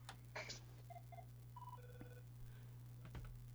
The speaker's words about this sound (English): Phone's ringing.